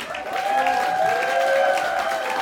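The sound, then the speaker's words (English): An inserted applause sound effect: a short burst of steady crowd applause with cheering, a dense wash of clapping at an even, sustained loudness for a couple of seconds, with no talking over it. “And my friends, many of you are actually going to be taking the brave step to go back to the gym, and I just insert applause sound right here.”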